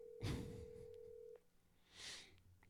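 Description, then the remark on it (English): A phone call connecting: a steady electronic ringing tone holds for over a second and then cuts off abruptly, with soft rustling bursts around it and no one speaking. “Yeah, I'm calling.”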